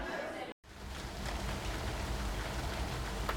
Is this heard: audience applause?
no